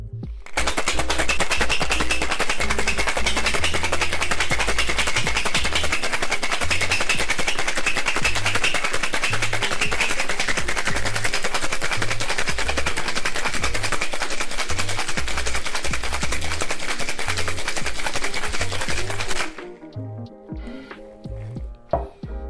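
Ice rattles hard and fast inside a metal cocktail tin as a Last Word cocktail is shaken until the tin feels cold, a loud, dense, steady clatter lasting nearly twenty seconds before stopping abruptly, followed by a few faint clinks.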